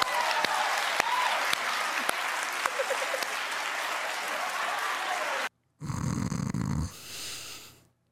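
A studio audience on Wendy's show, prompted to clap if they've ever wanted to kill somebody, breaks into loud, steady applause that runs for about five seconds before cutting off abruptly, followed by a short burst of a low, rough buzzing sound.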